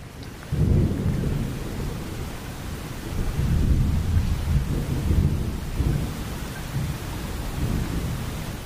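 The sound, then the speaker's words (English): Deep, rolling thunder rumbles almost continuously over a steady wash of heavy rain, loud, swelling and easing in waves with no voices present. “A storm raged all night, so all of them arrived late.”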